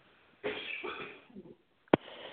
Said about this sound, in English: Goodness. To take a cough break there. Does anybody have a cough drop in the audience?